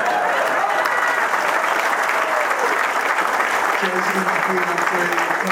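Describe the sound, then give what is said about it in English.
A crowd applauds steadily, a dense, loud patter of clapping that holds its level throughout, with faint voices and cheers mixed into the noise. “You gotta clap for that, darn it.”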